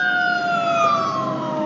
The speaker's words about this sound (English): Oh, there's a fire truck.